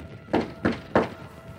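Three firm knocks on a wooden door in a hallway, evenly spaced about a third of a second apart, each a dull thud with a short decay, followed by quiet.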